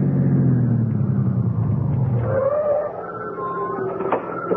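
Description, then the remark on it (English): A car engine rumbles on arriving home from an evening church service, its low drone sliding downward in pitch for a couple of seconds before easing into a quieter idle hum. No one speaks. “Aren't you going to put the car away”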